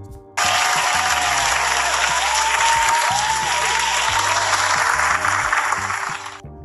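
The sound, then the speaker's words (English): Loud, sustained applause from a sizable crowd, starting abruptly and holding steady for several seconds before tapering off at the end, with a few faint voices and whoops mixed in. “first of all, round of a fucking applause.”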